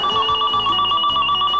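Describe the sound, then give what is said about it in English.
A telephone rings steadily for a moment, a bright warbling electronic tone that holds without pause, fairly loud, with no one speaking. “I'm to the point where I don't answer the phone anymore because someone may want something and I don't want to have to say no.”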